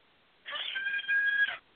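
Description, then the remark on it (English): A male pet cat named Birdie lets out one loud, drawn-out yowl lasting about a second, a high, strained wail with a steady tone that swells slightly before cutting off. No one speaks over it. “I don't know why he's screaming. He knows he's not getting out.”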